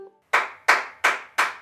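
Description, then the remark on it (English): Four sharp hand claps land in a steady, evenly spaced rhythm, each one bright and crisp with a quick decay, clapping back the rhythm of the spoken phrase "skillet cornbread" in a clap-back rhythm game. “For example, if I say, skillet cornbread, you would clap.”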